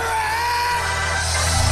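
A crowd in front of a Jumbotron screen yells and screams in a continuous, loud roar, with high whoops and shrieks rising above a dense wash of voices for the whole stretch.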